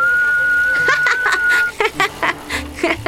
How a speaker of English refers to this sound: The wind's making my teeth holes whistle!